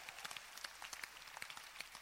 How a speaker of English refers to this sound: Oh, I think we should clap for our missionaries.